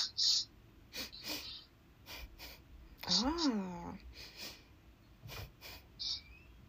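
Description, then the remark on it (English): Several short, sharp breaths drawn in and pushed out through the nose as a breathing exercise, in through the nose and out through the nose twice, fairly quiet, with a brief voiced, wavering hum midway through the sequence. “You're breathing in through your nose and out through your nose twice.”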